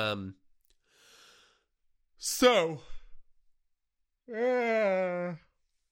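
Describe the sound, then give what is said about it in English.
Someone yawns out loud: a breathy intake sliding into a falling groan, then a long, drawn-out voiced exhale, with a brief vocal sound at the very start. “After I get my yawn out of the way, we'll start with the Jedi.”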